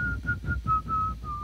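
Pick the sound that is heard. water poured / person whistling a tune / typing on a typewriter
person whistling a tune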